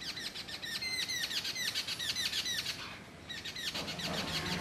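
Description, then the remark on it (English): A flock of babbler birds chirps busily on the felled branches of a mango tree, with rapid overlapping high calls repeating in quick bursts. The chorus stays fairly loud throughout, with no talking. “Now babbler birds and squirrels hop along its felled branches and stop, confused, when they end abruptly.”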